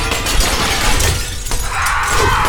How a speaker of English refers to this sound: The windows burst inward in a shower of glass, and bladed feathers and an enormous steel-gray shape knocked me to the ground.